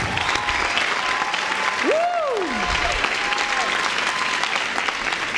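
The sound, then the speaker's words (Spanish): A large church audience at Presencia Viva applauds steadily and loudly for several seconds, clapping for God, the clapping dense and continuous, with a rising-and-falling whistle or cheer cutting through midway. “Déselo fuerte a Dios.”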